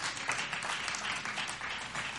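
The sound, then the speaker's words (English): An audience at a church service claps together in a dense, steady wash of applause, many hands blending into a continuous crackling roar at an even, moderate level with no voices on top. “If you want to clap, clap.”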